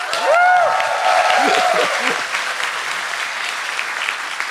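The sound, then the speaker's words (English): An audience at a live panel claps steadily for several seconds, a dense wash of applause with a couple of sharp whistles and a few cheers near the start, then the clapping carries on slightly softer, welcoming Ryan Clements. “You're allowed to applaud.”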